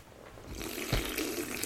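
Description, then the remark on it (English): A wet, slurping sip of a drink from a can, a soft hiss of liquid swelling after a quiet start, with a small click partway through and no talking. “The ASMR sip.”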